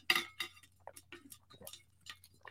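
Glass clinks sharply a few times as someone gets some water, the first ringing brightly, followed by irregular lighter taps and clicks over a low steady hum, with no one talking.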